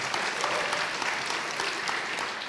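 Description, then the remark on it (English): A church audience applauds news that Wednesday-night children's attendance is up over 65%: a dense wash of many hands clapping at an even, sustained loudness with no voices standing out. “Yes, you can clap for that one too.”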